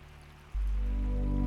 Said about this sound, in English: With each step, the sounds of the waterfall grows bolder. You start to feel the mist from the crashing falls on your face, little droplets of water landing on your body.